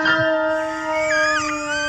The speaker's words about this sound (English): That was a dog.